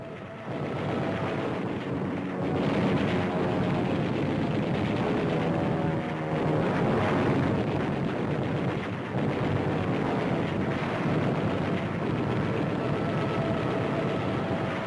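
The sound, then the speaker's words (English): Fighter planes roar overhead with wing cannons firing as they attack ships, amid explosions: a dense, continuous, loud wall of engine drone and gunfire with no pauses, and no voices. “Out of the sky they roar with wing cannon blazing, tearing into ships of every description, ships that the hard-pressed Japs can ill afford to lose.”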